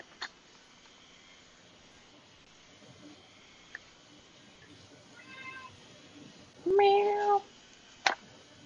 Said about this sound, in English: Meow. I hear that kitten. Mm-hmm. He's a whiny kitten. Mm-hmm. No, he just wants lovin'. He does. He's a sweet kitty.